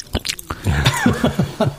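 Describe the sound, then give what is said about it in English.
Loud, wet open-mouth gum chewing imitated by a person: a quick run of smacking, squelching mouth clicks in a steady rhythm, with no words spoken. “And that's how the mobster's wife thinks to chew their gum.”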